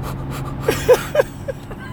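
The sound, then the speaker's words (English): A voice imitates heavy, labored panting like a woman in labor, from stomach pain while driving: a quick run of four or five short, breathy huffs, moderately loud over a low, steady background rumble. “I'm doing all this breathing because it's hurting.”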